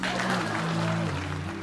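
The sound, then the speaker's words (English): An audience at a political speech claps steadily for under two seconds after being asked to, a dense, even wash of hand claps over a low, humming murmur, with no clear voices standing out. “Please clap.”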